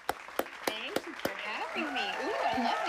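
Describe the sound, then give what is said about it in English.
Applause welcoming a guest onto a show: several sharp, evenly spaced claps ring out at the start, then give way to a busy wash of crowd voices and cheering that carries on to the end. “Ooh, I love the applause.”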